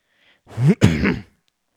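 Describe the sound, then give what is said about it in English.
A loud cough in two quick bursts, the second longer and raspier, with no talking around it. “Damn, my cough is still annoying.”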